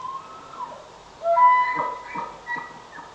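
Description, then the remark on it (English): An elk screams: a shrill, whistling cry that wavers in pitch, rising out of a quiet start into a few strained, squealing bursts with short breaks between them. “Terrifying elk scream. This is what they sound like.”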